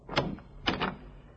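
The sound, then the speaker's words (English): Knocking on a thick, heavy mahogany door off a waiting room: one solid rap, a short pause, then two quick raps, fairly quiet with a slight room echo, no voices. “The receptionist was out, and I took a crack at the thick mahogany door.”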